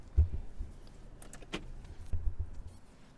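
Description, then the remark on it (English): A car being switched off: a few low thumps and a quick cluster of sharp mechanical clicks over a faint engine rumble, with no one talking. “So anyway, I should turn off my car.”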